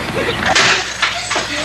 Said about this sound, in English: Don't slam the door